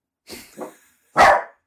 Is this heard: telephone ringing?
no